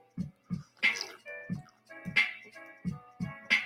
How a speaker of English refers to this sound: I got to sip my tea for you.